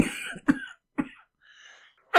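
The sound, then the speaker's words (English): A person coughs several times, sharp harsh bursts spaced apart with short gaps and a faint raspy breath between them, ending on a louder cough. “Would you like a sip of your favourite fruit juice for that cough?”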